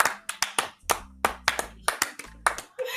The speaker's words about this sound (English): I'm saying this, I need to clap right now.